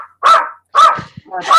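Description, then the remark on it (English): A dog barks three times in quick succession, loud, each bark sharp with a short gap before the next. “I love dogs. I'm just so proud mine hasn't started yet.”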